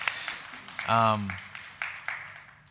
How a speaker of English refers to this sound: So let's get a round of applause for our participants today. And thank you.